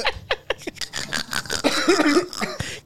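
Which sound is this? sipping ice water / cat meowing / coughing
coughing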